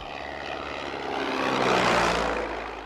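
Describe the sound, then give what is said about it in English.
The propeller engine of Denys Finch Hatton's Gypsy Moth aeroplane drones steadily overhead, its buzzing hum swelling louder as the plane passes, then easing slightly. No voices, just the continuous engine roar. “Dennis Finch Hatton's plane, a Gypsy Moth, crashed in May of 1931.”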